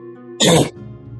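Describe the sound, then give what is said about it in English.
A single short, harsh guttural rasp from a voice, like a gravelly throat-clearing, imitating the growled demonic language Abyssal, over a faint steady background hum. “Was that Abyssal or a cough? That was Abyssal.”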